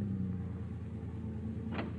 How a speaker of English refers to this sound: Finally, you bring the car to a stop in front of Tommy's boarding house.